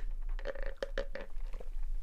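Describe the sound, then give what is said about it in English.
Someone sips iced coffee from a cup with a flat lid, with a quick run of wet slurping and crunchy, clicking ice sounds over about two seconds, no talking. “I'm just going to have a sip of coffee as well.”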